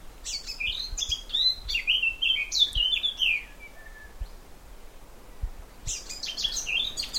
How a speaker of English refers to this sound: And we were greeted by this amazingly tuneful bird, which I recorded, and I think it was a blackcap.